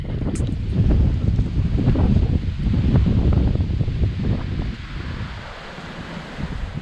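Steady, loud wind buffets the microphone under the pier at Folly Beach, about 100 yards from the water. It is a continuous low roar with gusty surges and a faint wash of surf behind it, easing slightly toward the end. No one speaks.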